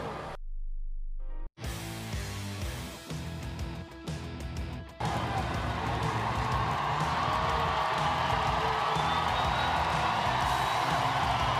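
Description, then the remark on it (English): A large stadium crowd at an Oklahoma Sooners softball game cheers in a steady, dense roar that swells louder partway through and holds at full volume, with scattered whoops and clapping, after a brief quiet hum. Everyone is standing in the seventh inning, with Oklahoma leading 5-1 and three outs from a national championship. “Listen to this crowd. Everyone is standing.”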